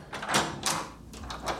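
A hotel room door opens as a visitor arrives, with a short series of clicks and rattling bursts, moderately loud, lasting just over a second with no one speaking.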